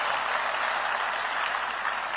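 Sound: audience clapping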